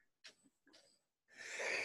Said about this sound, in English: Ooh, that was itchy. She's on the edge of a sneeze.